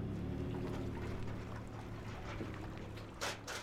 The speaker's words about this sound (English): At the ramp, we did what people do at boat ramps. We loaded our overnight gear into the motorboats, parked the vehicles, and pushed out. We motored at the no-wake speed of super slow for about 7 minutes.